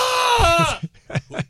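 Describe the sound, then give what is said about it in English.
People in the background, excited by news of a Knicks basketball trade, let out a loud, high-pitched scream that holds for most of a second and slides downward in pitch, followed by two or three short, sharp vocal yelps. “All those people in the back screaming don't know who the hell Josh Hart is”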